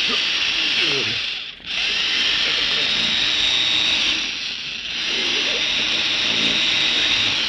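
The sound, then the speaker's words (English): A power drill grinds steadily into the metal of a vault, a loud, high, harsh whine that runs almost the whole time, dipping briefly twice before roaring back at full strength. “Do you think I've drill into this vault deep enough now”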